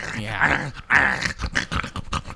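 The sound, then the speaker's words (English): A dog lets out a string of low growls and whiny grumbles, a couple of longer rumbling bursts followed by shorter choppy ones, with no talking. “He's just gonna puke it up on the carpet because it's goddamn greens to a dog.”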